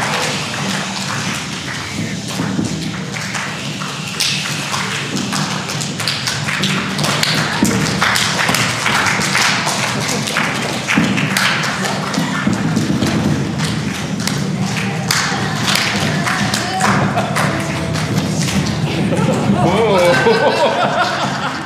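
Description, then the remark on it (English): A crowd claps and stomps in a dense, continuous patter of sharp slaps and heavy thuds, mimicking a rumbling thunderstorm, with voices murmuring underneath throughout. “So for lightning and thunder, you can clap. You can stomp, rumble.”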